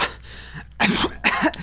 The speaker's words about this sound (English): As I cough through the toxins, I look at you with my what do you care stare.